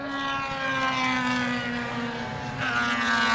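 Loud, continuous whine of racing engines on a track, a dense layered drone that holds steady with slight pitch shifts as cars run past, with no voices.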